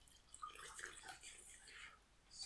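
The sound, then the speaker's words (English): Wine is poured into a glass in a soft, steady trickle with light gurgling splashes, quiet, lasting a couple of seconds with no talking. “I may as well just pour some more wine.”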